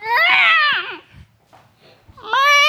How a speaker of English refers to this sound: A kitten hisses and zips out.